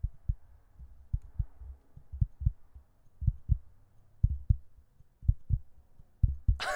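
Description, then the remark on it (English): A voice imitates a heartbeat with low, thumping paired beats in a steady rhythm, fairly loud, ending with a brief burst of louder sound. “I'm doing the heartbeat.”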